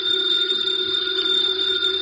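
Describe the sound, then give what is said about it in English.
A house telephone rings with a steady electronic tone, its bright, sustained high tones filling the moment continuously, fairly loud, with no voices over it. “It's the house phone, Miss Lawrence.”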